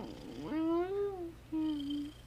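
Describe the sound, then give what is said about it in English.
A cat meows twice in quick succession, a longer drawn-out call followed by a shorter one, fairly clear, with no voices over it. “The cat's all over our space right now.”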